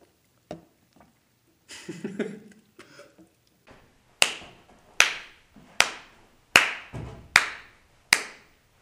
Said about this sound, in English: Here, go ahead and give a clap. For each mic. There we go.